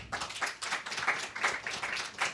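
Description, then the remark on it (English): Scattered audience applause cast as a vote for an option, a small group clapping in a fairly steady rhythm of bright, crisp bursts, soft and brief, with no voices. “This won't make for a great podcast, but how many think it's won by sound of applause?”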